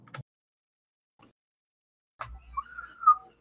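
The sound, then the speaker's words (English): A short, wavering whistle rises and dips in pitch for about a second, after a couple of faint clicks and a stretch of near silence. “Aw, I even messed up the whistle for you.”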